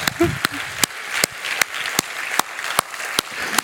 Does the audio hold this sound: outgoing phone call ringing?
no